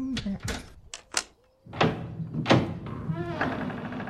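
A door being worked open: a quick series of sharp clunks and rattles, a brief pause, then scraping, creaking mechanical noise as it gives way.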